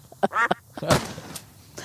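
A few short, nasal duck quacks come in quick succession, followed by a brief noisy burst, moderately loud with no talking.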